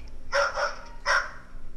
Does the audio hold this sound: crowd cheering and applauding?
no